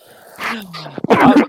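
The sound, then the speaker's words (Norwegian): Someone coughs and clears their throat: a rough, rasping throat-clear followed by a few harsh, bursting coughs in quick succession. “Hvis du kan slutte hosten da”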